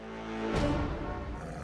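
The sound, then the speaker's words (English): The tiger Mr. Stripes, freaking out, bursts into a roar after a low droning hum, loud and rough, holding as a sustained growling roar through to the end with no talking. “Your tiger's freaking out”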